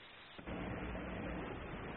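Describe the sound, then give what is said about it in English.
A firework explosion goes off after a brief quiet moment: one sudden loud boom that rolls into a sustained, rumbling roar lasting to the end, with no voices. “Remember, Stroh says, don't light fireworks off your head.”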